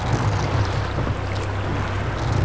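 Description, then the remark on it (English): A rowboat moving steadily through dark water, with a continuous low rumble and soft wash of water sounding even throughout, with no voices. “Ruddy-faced Charon cuts through the dark water on his rowboat.”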